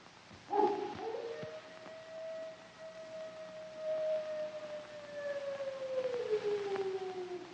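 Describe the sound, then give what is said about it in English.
A wolf lets out a long, drawn-out howl that holds steady for several seconds before slowly sliding lower, with a brief sharper cry at the start. No one speaks. “Listen to them. Children of the night. What music they make.”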